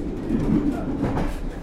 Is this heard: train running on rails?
yes